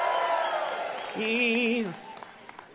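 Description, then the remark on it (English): A church audience erupts in loud, mixed shouting and cheering, giving God a shout during worship, with one sustained wavering whoop rising above the crowd noise before the roar fades into scattered calls. “Come on, let's give God a good shout.”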